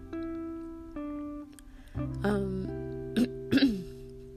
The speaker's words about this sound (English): clear my throat.